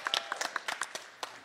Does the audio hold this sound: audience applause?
yes